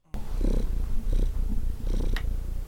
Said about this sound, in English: Well, I'm just petting my cat. Oh, he's purring on my lap.